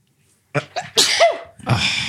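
A single loud, close sneeze with a sharp intake beforehand and a forceful burst, followed by a brief breathy trailing sound.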